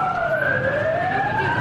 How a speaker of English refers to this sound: Air raid sirens sounded throughout Ukraine.